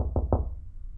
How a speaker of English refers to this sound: Screech, you actually hear a hurried, rushed knock on your door.